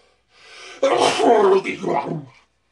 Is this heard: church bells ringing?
no